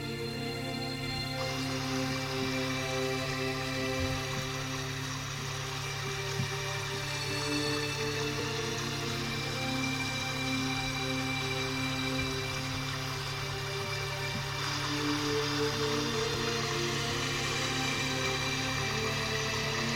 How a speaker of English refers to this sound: The water sounds are from a creek in my neighborhood after a winter snowfall.